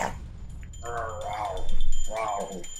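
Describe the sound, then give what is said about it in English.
A person imitates a creature's growl with two drawn-out, throaty vocal rumbles, one after the other, moderately loud, with no other talking. “Growl.”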